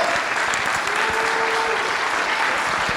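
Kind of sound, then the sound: crowd, audience round of applause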